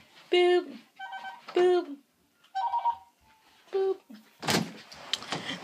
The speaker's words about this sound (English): Phone's ringing. Phone's ringing.